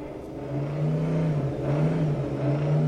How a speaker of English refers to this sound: Well, as you can hear, the GTE cars are warming up in the background here at Monteblanco.